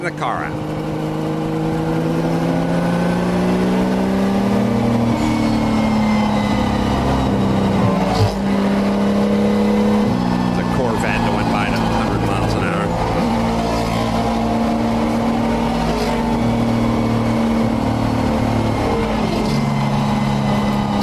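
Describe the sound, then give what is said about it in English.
Race car engines roar continuously around a track, their pitch climbing and dropping as cars speed past, loud and steady throughout, with indistinct voices mixed underneath. “That's how fast the race cars were going on the racetrack.”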